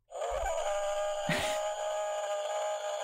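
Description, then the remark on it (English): A long, drawn-out howl in a forest holds a steady, moaning pitch for about three seconds, with a brief rough burst partway through, and no talking over it. “That's a really long howl.”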